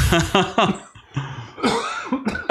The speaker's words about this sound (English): Dude, the more I talk, the more I cough. I can't talk anymore.